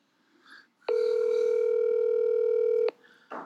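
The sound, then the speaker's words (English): A phone rings over speakerphone during a call to a league member who does not answer: one steady, loud electronic buzz held for about two seconds, with faint rustling noise just before and after. “Yep, give me that phone.”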